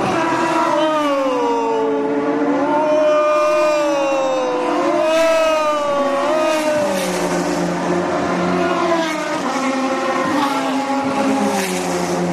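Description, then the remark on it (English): Race car engines scream past one after another at the Honda Indy during a Friday practice session in July, their pitch rising and falling in long sweeping waves over a constant loud roar, with faint crowd noise underneath. “I'm at the Honda Indy. I got a seat. I can actually see cars going by.”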